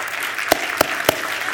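An audience at Vineyard Northwest claps in a steady, crackling wash of applause, with three sharper, louder claps standing out at an even rhythm. No one speaks.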